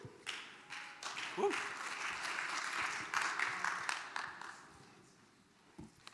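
An audience breaks into a round of applause, a dense, steady wash of many hands clapping for several seconds before tapering off, with a brief whistle-like tone early on.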